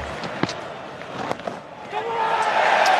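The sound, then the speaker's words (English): A large stadium crowd at a Test cricket match applauds and cheers as David Warner reaches his 22nd Test century with a fist pump. The broad wash of clapping and voices swells louder over the last second, with a few sharp knocks early on. “Strong applause from the crowd.”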